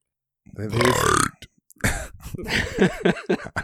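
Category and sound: human body sound, loud burp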